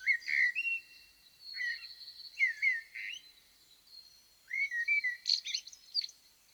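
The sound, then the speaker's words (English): Blackbird song: rich, fluting whistled phrases delivered in three separate bursts with short pauses between, clear, with no voices and nothing else in the background. “What associations do you have with the blackbird?”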